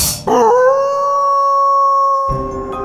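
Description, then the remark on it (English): A single long, steady wolf howl sound effect rises briefly and then holds a sustained tone for about two seconds before trailing off, loud with no talking. “Next time you see a full moon, howl at it and pretend you're a werewolf.”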